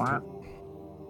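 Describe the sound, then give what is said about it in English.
A single short, nasal duck quack made by a human voice as a greeting to birds, loud, followed by a brief fading tail of background sound. “I would have gotten out of my luxury converted broom closet on the roof, said hello to my bird pals, and...”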